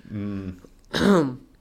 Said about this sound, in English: Side note, for whoever has to listen to this, sorry about my consistent coughing.